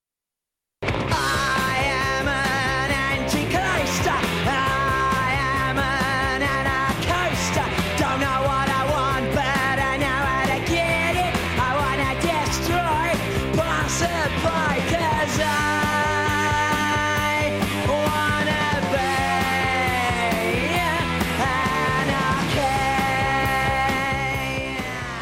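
A loud punk rock song plays continuously for about 25 seconds after a brief silence, with dense, distorted guitars, a steady driving beat and shouted, yelling vocals.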